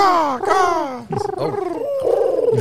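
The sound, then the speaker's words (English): A person imitates a woodpecker call with their voice, producing a few warbling, whine-like cries that slide down in pitch, then a wavering, rapidly pulsing stretch, fairly loud and with no other talking. “I was trying to get woodpecker.”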